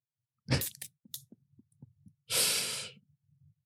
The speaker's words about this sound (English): And those aren't sound effects, people. That's Ben pouring from the can as we speak.